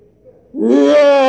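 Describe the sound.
After a brief hush, a voice lets out a mock lion's roar, imitating the devil going around like a roaring lion as the Bible says: one loud, sustained, throaty bellow that swells quickly and holds a steady, slightly rising pitch until it cuts off.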